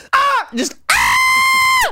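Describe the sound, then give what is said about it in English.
A loud human shriek: a couple of short wavering vocal cries, then one long, steady, piercing scream held for about a second before cutting off. “It used to be, I used to have a different voice. Just a shriek.”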